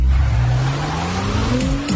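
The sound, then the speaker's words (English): The 355-horsepower turbo V6 engine of a new Acura MDX Type S SUV accelerates hard, its rising growl climbing steadily in pitch over a couple of seconds with a constant rushing undertone and no voices. “With a powerful turbo V6 engine with 355 horsepower, it has room for the driver and six passengers.”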